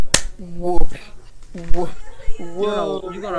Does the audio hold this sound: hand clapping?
yes